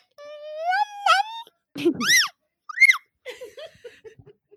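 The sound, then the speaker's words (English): A young child imitates a cat, making several high, wavering meow sounds in short bursts, with rising and falling pitch and small pauses between each cry. “That's all her cat sounds.”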